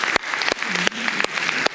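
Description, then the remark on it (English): A crowd applauds steadily to honor moms during a weekend celebrating mothers, the clapping dense and continuous with a few sharp, louder claps standing out, and a faint cheering voice rising underneath. “So maybe at all of our campuses right now, one more time, we just give our moms a huge round of applause.”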